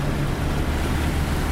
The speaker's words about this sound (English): Just let it push its way through. Up to the bonnet. That is deep, isn't it? That's deep, yeah. Listen to the sound of the water. That's deep.